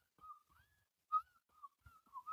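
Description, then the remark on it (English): A person whistles the theme tune of The Andy Griffith Show into the microphone, a short, bouncy melody with the notes gliding and wavering and small breathy puffs between phrases. “Just sounded I whistled into the mic.”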